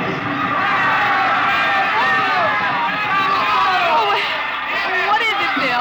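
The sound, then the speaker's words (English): A large festival crowd yells and cheers in a dense, unbroken roar, many voices overlapping at once, loud throughout with no clear pauses: a fiesta crowd on a spring night in a plaza in Mexico, cheering a papier-mâché bull amid fireworks. “They're cheering for the bull.”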